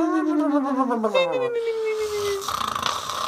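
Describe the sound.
A person vocally imitates a cartoon-style Disney Pixar snore, a wavering, buzzy tone gliding downward for about two seconds, followed by softer breathy noise.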